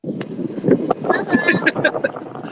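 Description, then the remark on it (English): Steady wind buffeting and a low engine rumble from a boat fill the background, fairly loud, while a person talks over the noise throughout; the air temperature is about 9 degrees Celsius. “Keep bragging that you're on a boat.”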